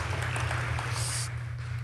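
An audience applauds, a steady wash of many hands clapping together over a low, droning rumble, holding an even level for the whole two seconds without any voices.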